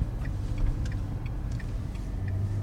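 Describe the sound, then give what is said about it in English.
Steady low road rumble from inside a tiny car driving along a tiny little road toward Frankfurt, a continuous droning hum with faint ticking clicks scattered over it and no one talking. “Good job we're in a tiny car.”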